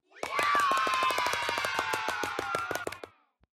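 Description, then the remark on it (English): A voice makes a sustained, strained grunting honk like a seal while hands do a seal clap, rapid and steady, about three seconds of quick, even claps that stop together with the voice, done as a birthday noise. “Do the grunt noise and the seal clap together.”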